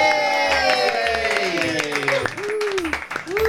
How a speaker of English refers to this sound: Hello, and welcome to the Big Finish podcast. You can all applaud if you like.